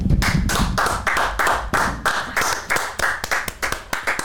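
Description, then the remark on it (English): Hands clapping in a quick, fairly steady rhythm, a dozen or so sharp, loud claps over a few seconds, with no one talking. The clapping is for the Minnesota Timberwolves after their 130-117 postseason road win over the Memphis Grizzlies. “And let's do a clap it up here for the Minnesota Timberwolves.”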